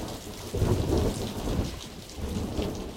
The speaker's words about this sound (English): Storm coming. He won't come out in that.